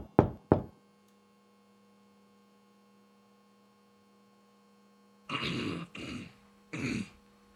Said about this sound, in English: And then you hear a knock at the door.